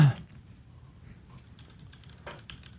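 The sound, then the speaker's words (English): Muted, irregular keystrokes on a mechanical keyboard with Cherry Red linear switches, a louder hit at the start followed by soft, scattered clacks, with no voices. “this is a very easy linear switch, so these must be Gordon's crumb-stained cherry reds”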